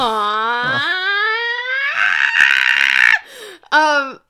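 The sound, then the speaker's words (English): A person lets out a long, loud, wavering scream that rises and falls, then breaks into a strained cry and a short yelp, a voice mimicking a cartoonish Mario video game scream. “That's another Mario reference. What? The scream? You screaming?”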